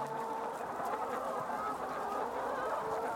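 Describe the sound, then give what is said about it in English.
A flock of farm chickens clucking and squawking together in a steady, busy chorus, continuous, with no one talking over it. “I was desperate to meet these industrious chickens, who now represent a major part of the bottom line for the Morris family”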